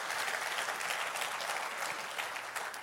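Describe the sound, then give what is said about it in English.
A crowd claps steadily, a round of applause for Pastor J.O. and Ray Dean, a dense, continuous wash of applause holding at even loudness for a few seconds with no one speaking. “and Ray Dean a round of applause.”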